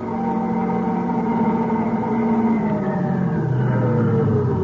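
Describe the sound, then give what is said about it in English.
A car engine hums steadily and loudly, then its pitch drops as the vehicle slows toward a stop. No one speaks. “What are you stopping for?”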